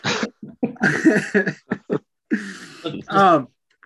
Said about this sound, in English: I can hear him heavily breathing in the background.